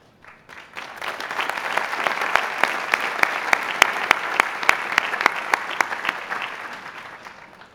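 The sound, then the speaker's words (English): An audience at Harvard University's commencement breaks into sustained applause for a class, a dense patter of many hands clapping that swells quickly, holds steady with a few sharp louder claps standing out, then tapers off toward the end. “Let's have a round of applause for that class again.”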